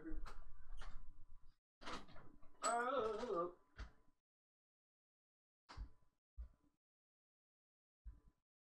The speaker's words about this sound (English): I'll go open the door. Can you give me 2 seconds? Give me 2 seconds.